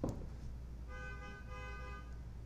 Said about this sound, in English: Is that a car horn? Yeah. Who's honking? I don't think it's at us.